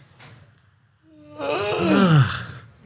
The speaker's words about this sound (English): Breathing in. Out, stretching, yawning.